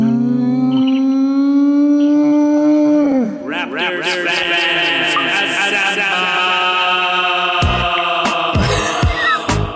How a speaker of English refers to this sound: Let's jump right into the Raptors talk. Maddie, would you give me that Raptors sting?